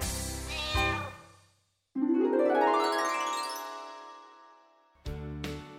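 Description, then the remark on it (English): A cat meows several times, including one long, drawn-out meow that rises in pitch, with brief pauses between calls and no talking. “Cat goes fiddle-i-fee.”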